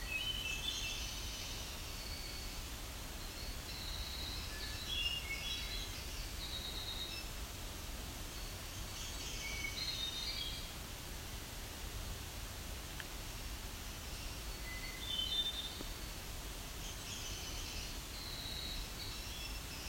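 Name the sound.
nashville warbler singing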